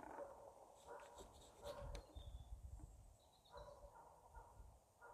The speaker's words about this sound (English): Don't know if you can hear dogs. I've literally just passed Strathclyde Police. It's the Police Scotland training ground that they use for training their police dogs in. So they come here to Pollock Park and train in a field, specially designed field